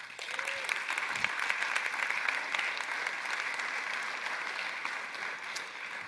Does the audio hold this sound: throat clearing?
no